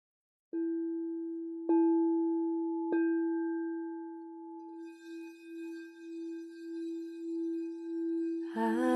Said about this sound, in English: And continue visualizing this as you breathe and listen to the healing tones of my crystal singing bowl.